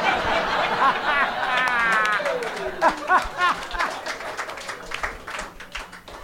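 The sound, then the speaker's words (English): A comedy audience breaks into clapping at a joke about The Lion King, mixed with laughter and scattered cheers, a dense burst of applause that swells early and then tapers off into lighter claps and murmurs. “You guys clap at that, but I walked on the Starbucks cop joke.”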